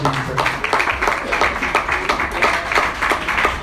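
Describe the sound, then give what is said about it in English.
An audience claps steadily for a few seconds, a dense run of sharp, fairly loud hand claps with a loose rhythm and a faint murmur of voices underneath. “Oh, I thought you clap.”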